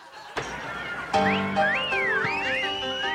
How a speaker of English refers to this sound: Just then we hear wolf whistles. What's happening? What is everyone getting excited about?